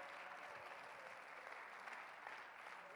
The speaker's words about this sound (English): Somebody clap their hands and give Him a shout of praise.